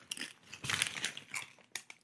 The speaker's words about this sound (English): The only thing I will say about taro chips is that you have to be really careful how you crunch them because they will break into small little bits and stab you in your gums.